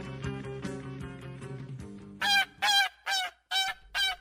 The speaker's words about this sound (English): Ah, the sweet sounds of geese honking.